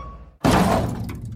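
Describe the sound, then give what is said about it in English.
After a brief hush, a sudden loud crash bursts in as an office chair is smashed, a heavy impact with breaking, clattering debris that rings on and slowly decays. Forceful, with no voices. “And that's my office chair.”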